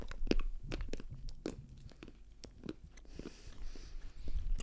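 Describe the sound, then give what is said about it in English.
Chewing of half a piece of Cadbury milk chocolate, with irregular crunchy bites and moist mouth sounds, followed by softer crinkly rustling near the end. No talking. “So a little bit of ASMR here”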